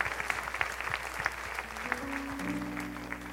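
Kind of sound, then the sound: crowd, audience applause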